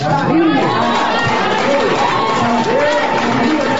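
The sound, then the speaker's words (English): A dense, steady crowd noise of many overlapping voices gathered around a female St. Louis city official, calling out and murmuring together, a continuous loud hubbub with scattered raised shouts like cheering. “Yeah, she had a crowd around her, and they were all, yeah, yeah.”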